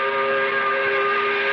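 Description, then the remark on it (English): A factory's 5 o'clock whistle at the plant blows one long, steady, loud blast, its several harmonic tones held without a break and with no voices over it. “The whistle just went off at the plant. It's the 5 o'clock whistle.”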